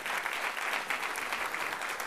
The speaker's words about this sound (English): Round of applause.